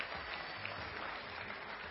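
An audience applauds a volunteer called up to join the presenter, a dense and steady wash of many hands clapping that holds at an even level for the whole two seconds, with no voices breaking through.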